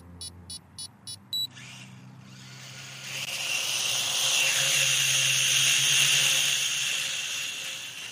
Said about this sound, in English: We've got a drone here. It's just a little hobby drone that costs about £50, weighs about 120 grams.